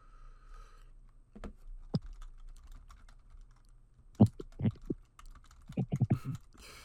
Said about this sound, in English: I'm typing away.